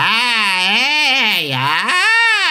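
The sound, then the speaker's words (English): A loud, bright sung vowel in chest voice, demonstrated by a vocal teacher, slides up and down in a wavering, squawky tone with a strong ringing edge, dipping low briefly before jumping back up for a final sustained note. “That's chest voice, right? A very squawky, pingy sound.”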